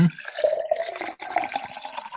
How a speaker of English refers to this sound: It's actually empty right now, but I'm gonna pour it. I made myself a whiskey sour.